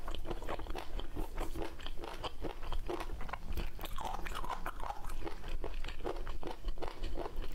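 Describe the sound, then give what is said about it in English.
Crunchy eating sounds from a TikTok ASMR food video in close-miked style: a steady run of crisp bites and chewing crunches, bright and fairly loud, repeating irregularly throughout with no talking. “So, yeah, there's going to be all sorts of eating.”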